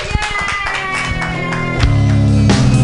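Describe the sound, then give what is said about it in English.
An audience claps steadily for a stand-up comedian at the end of her set, dense overlapping hand claps with some sharper individual slaps, mixed with a sustained tonal backdrop of music that swells louder in the final second. “Keep clapping, yay!”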